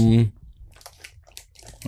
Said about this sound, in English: Man, chewing on mic.